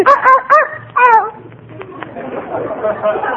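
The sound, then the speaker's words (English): A small dog gives three quick, high-pitched yaps, then falls quiet while people talk over a busy background in a post office at Christmas time. “Fifi is a very intelligent dog and very valuable, too.”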